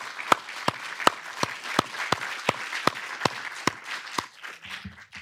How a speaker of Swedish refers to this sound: Tack. Vi ger dig en applåd.